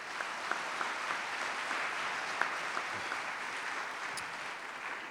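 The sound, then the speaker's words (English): An audience claps in a steady, dense round of applause lasting several seconds, a broad crackling patter of many hands at an even, moderate loudness, with no one speaking. “So can we give them a round of applause once again?”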